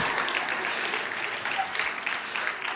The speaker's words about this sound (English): Thank you for the clap.